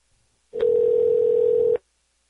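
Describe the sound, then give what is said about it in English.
A steady, loud telephone dial tone hums alone for just over a second, starting and stopping abruptly with a faint click at each end. “I wonder if this poor person with this phone number has gotten harassed for this very reason, or someone misdialing.”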